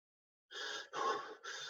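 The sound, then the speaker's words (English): A person breathes in quick, heavy, hyperventilating pants, three loud breaths in fast succession after a brief silence, with no talking. “Again, hyperventilation.”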